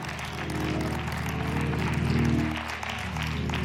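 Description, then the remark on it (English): An audience claps in a dense, steady wash of applause for several seconds, with sustained low musical tones, like an organ, holding underneath. “Now, if it's something as severe as autism, y'all clap.”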